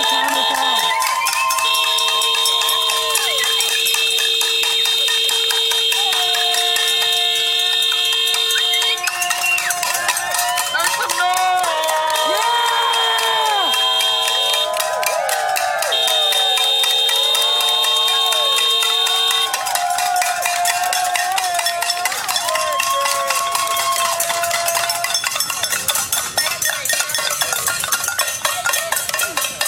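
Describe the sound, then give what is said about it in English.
A loud crowd of protesters outside Senator Mitch McConnell's house, around 5 or 6 o'clock in the morning, demanding justice for Breonna Taylor, makes a racket, with clanging cowbells, long steady horn-like blasts and shouting voices blending into a continuous din that never lets up. “Protesters showed up at his house demanding justice for Breonna Taylor in the wee morning hours, I think around 5 or 6 o'clock in the morning.”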